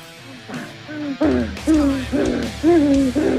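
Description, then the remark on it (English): Monkey calls play back as a run of five or six loud, hooting cries, each a pitched, slightly rising whoop with rich harmonics, repeating in a steady rhythm with no talking over them. “Are you playing that fucking monkey clip over?”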